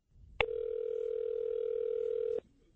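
A steady telephone dial tone hums for about two seconds, starting and ending with a sharp click, clear with no voices, as a phone call is placed to someone's mother.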